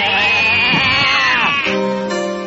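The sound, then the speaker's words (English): A loud goat-like bleat from a goat man coming to the door wavers for about a second and a half, then shifts into a steadier, buzzing tone, with no speech over it. “It's coming to the door. It's a goat man.”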